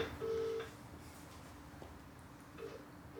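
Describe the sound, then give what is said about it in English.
Two short electronic phone tones from a smartwatch accidentally placing a call, one near the start and a fainter one near the end, quiet against a low background hum with no talking. “watch just rang. he watch dialed someone.”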